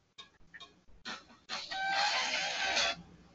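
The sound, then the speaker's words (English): A new phone's alert that sounds like a chicken: a few short clucks, then a long, loud, bright crowing squawk held for about a second and a half before it cuts off. No one talks over it. “My new phone. New phone acting up. Sure. Yeah, it sound like a chicken.”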